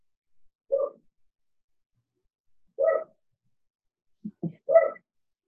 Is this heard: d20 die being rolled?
no